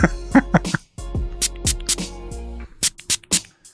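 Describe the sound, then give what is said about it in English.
Cologne spritzed into the air from an atomizer bottle: a series of short, sharp hissing puffs in an uneven rhythm, fairly loud, over a low steady hum. “Now I'll spray mine.”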